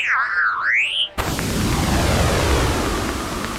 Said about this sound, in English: The watermelon smashing contest is about to begin. I'm gonna smash a watermelon with my head. Now we're talking.